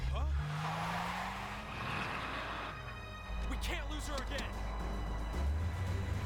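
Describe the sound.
A DeLorean car drives by with a loud, steady engine rumble, and brief high tire squeals cut in midway. Voices murmur faintly underneath.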